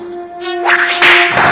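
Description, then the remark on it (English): A bolo whip cracks sharply twice, about half a second apart, as it is used to frighten an opponent into fleeing, amid a rushing whoosh over a steady electronic hum, loud with no voices. “using his more powerful bolo whip, Tiger easily frightens the Mole Master, sending him fleeing”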